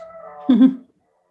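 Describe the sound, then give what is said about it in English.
A dog howls briefly: a thin, steady wailing tone swells into a louder, lower yowl that cuts off after under a second, followed by silence. No one speaks. “Sorry, my dog is howling.”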